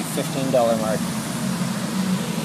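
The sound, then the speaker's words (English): Outdoor gas station ambience while a car is being refueled: a steady low mechanical hum like an idling engine or pump drones throughout, with a brief faint voice early on. “Feel free to let me know if you would like me to pause it next time that I get gas, because my lack of planning, I can tell you that this will happen again.”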